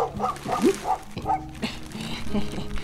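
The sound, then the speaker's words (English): Several puppies yap excitedly in quick, overlapping, high-pitched bursts, with a steady background of shuffling noise throughout. “Then gently pick up the noisiest, most irritating puppy.”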